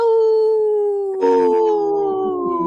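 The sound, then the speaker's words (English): A long, steady howl glides slowly downward in pitch, and partway through a second howling voice joins in, overlapping it. Wolf howling, loud, with no talking. “This portion of the show is supported by Howling for Wolves, protecting wolves for future generations.”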